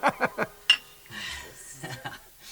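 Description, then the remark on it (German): Glass bottles clink together once in a bright, ringing tap during a toast, surrounded by a few short vocal bursts and low murmuring chuckles, moderately quiet. “Und jetzt lasst uns endlich die Pullen öffnen.”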